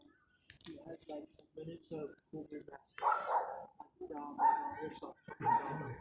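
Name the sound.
dog barking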